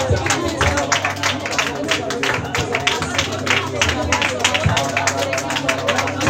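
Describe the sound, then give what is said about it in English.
Many hands clap in a fast, uneven rhythm during a prayer, sharp bursts repeating steadily across the whole stretch, with a low murmur of voices running underneath. “Say as I clap my hands, let your plan backfire.”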